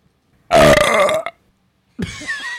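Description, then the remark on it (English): A single loud, deep burp rumbles for nearly a second, strained, followed after a short pause by the start of someone talking. “That bitch was angry. That sounded painful.”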